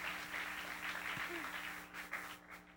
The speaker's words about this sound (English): Y'all keep clapping.